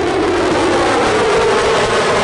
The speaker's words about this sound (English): Fighter jets buzzing the town. Now, things officially begin Friday here in Milwaukee. 10 a.m. to 3 p.m. is the air show practice.